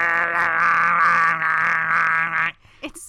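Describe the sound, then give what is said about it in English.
A voice imitates the timer of the board game Perfection with a loud, steady, buzzing drone that holds for about two and a half seconds, wavering slightly, then breaks off into a short breath. “So like the timer on that thing's like.”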